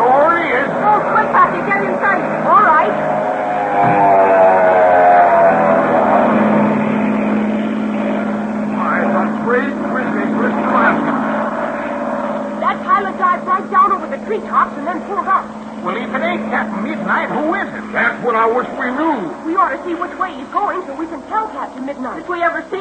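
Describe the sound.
A propeller airplane drones overhead, its deep, steady engine hum swelling and holding for several seconds before easing off as voices talk over the fading rumble.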